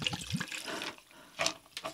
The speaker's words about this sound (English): Did you see how fast that poured? That wasn't my fault.